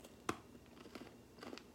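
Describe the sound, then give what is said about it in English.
A crisp bite into a Halloween-candy-size Crunch chocolate bar, followed by a few quieter crunching chews, with no talking. “All right, so how does this Crunch Bar taste?”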